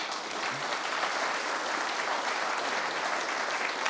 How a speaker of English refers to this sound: Thank you for all that you're doing. Can we just give you all a round of applause?